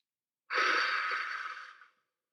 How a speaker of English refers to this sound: Exhale through the mouth for 4 seconds and hold that breath for 4 seconds. So you can do a cycle. And again, usually 4 rounds of it is enough. I like to kind of visualize, you know, drawing a little box or something for the box breathing. So Hold.